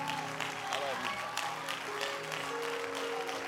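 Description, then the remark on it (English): A church audience claps to the Lord in praise at an evening service, steadily and densely for several seconds, a loud continuous patter of hands, with voices calling out and sustained vocal tones rising over the applause. “Let's clap to the Lord and give him praise and adoration tonight.”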